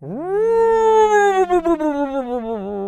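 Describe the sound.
A voice imitates a house groaning in strong wind: one long, loud moan that swoops upward, holds, then wavers and warbles before trailing off, alone for about three seconds.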